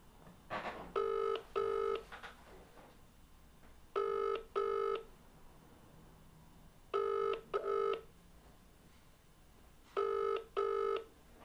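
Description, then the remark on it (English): A phone rings out over a speakerphone, a repeating double-burst ringing tone heard four times at steady intervals with quiet gaps, going unanswered and with no one talking. “There's a lot of ringing, isn't there?”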